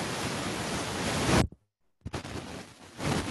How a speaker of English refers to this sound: Okay, the static is happening right now. What were you doing right now the past 7 seconds? I literally just moved.